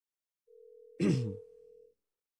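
An outgoing phone call to a coworker sounds its ringing tone once: a steady electronic hum lasting about a second and a half, with a sharp breathy gasp briefly over its middle.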